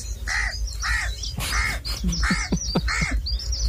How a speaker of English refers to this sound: Crow or no, …? Crow. That's a crow! Oh, he's good.